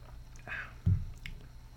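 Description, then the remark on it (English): A quiet sip of a 2016 Famiglie Suave wine from a glass: a short slurp followed by a soft gulp and faint wet mouth sounds, with no talking. “Anyways, I'm drinking a little glass of wine tonight. Let me just take a little sip here.”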